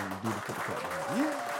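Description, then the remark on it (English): A short burst of an applause sound effect played on cue, a steady wash of many hands clapping, with a voice rising and falling over it in a brief exclamation. “Put the clap on.”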